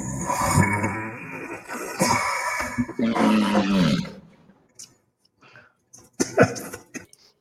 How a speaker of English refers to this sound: That fucking fart. What is that sound? It sounds disgusting.